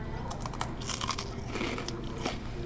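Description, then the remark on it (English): Crisp crunching as someone bites into a matcha green tea snack and chews, a quick series of sharp crackly bursts over a couple of seconds with no talking. “I guess we'll just have to bite into it.”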